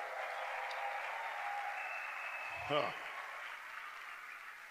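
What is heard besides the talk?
audience clapping hands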